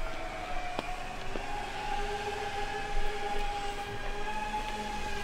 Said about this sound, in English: It's like directly up. A yellow and white drone with a wingspan of 1 meter carefully lowers a package via a piece of string onto a patch of nature strip next to